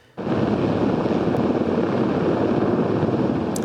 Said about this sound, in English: A helicopter crew was tasked with the delicate challenge of transporting and helping to install a large-scale LED sign on the roof of a building on the corner of West Georgia and Thurlow Streets.